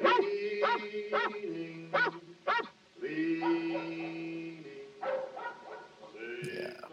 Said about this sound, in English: It's later, the moon has risen higher, and the first thing we hear is a dog barking.